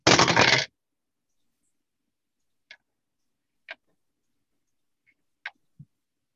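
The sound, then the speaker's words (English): Dice rattle in a short, loud burst, then a few sparse, sharp clicks spaced over several seconds as they tumble and settle on a hard table, with no voices. “Actually, the wrong dice.”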